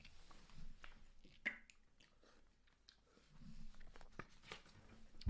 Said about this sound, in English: Sorry, just coughing up phlegm here.